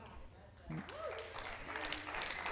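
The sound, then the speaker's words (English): An audience breaks into steady applause, a dense crackle of many hands clapping that swells after a moment and holds at a fairly even level, with faint voices mixed in. “I'll pander for claps for God.”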